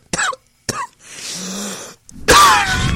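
A wet, phlegmy cough: two short harsh bursts, then a rattling, gurgling stretch of congested breath, ending in a loud, raspy hack with throat-clearing. No talking.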